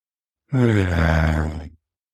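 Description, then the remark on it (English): A single deep, audible exhale with a slight voiced, sighing quality, fairly loud, lasting just over a second before trailing off into silence, a person breathing out during closing deep breaths of a mindfulness practice. “And let us finish this practice with three deep breaths together.”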